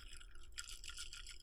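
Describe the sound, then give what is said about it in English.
Ice cubes clink and rattle against a glass of ice water with a little water sloshing, a quiet run of bright tinkling knocks that grows busier midway through. No one speaks. “It's over ice, you can tell.”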